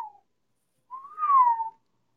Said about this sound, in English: Yeah, I got that whistle there.